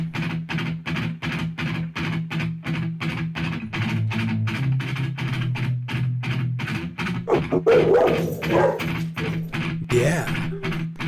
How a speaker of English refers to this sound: Doggies. Every time it rings, they start barking.